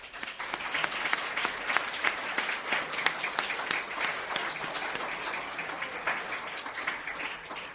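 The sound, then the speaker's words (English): An audience applauds steadily, a dense patter of many hands clapping at an even loudness for several seconds, with no voices standing out. “and I just wanted, again, applaud him for that.”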